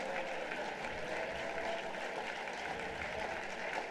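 An audience claps their hands together, a dense, continuous patter of many overlapping claps holding a steady, fairly loud level for the full four seconds without any clear talking.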